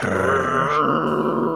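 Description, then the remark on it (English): A man lets out a low, rumbling growl from deep in his throat, sustained and steady for over a second, fairly loud with no words. “And then Mr. T's response is a growl. Just a growl.”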